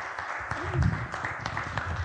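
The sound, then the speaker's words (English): A crowd claps together in a steady, dense wash of applause, moderately loud, with a murmur of voices mixed underneath, applauding to welcome and encourage a speaker. “So give him a wee round of applause and encourage him.”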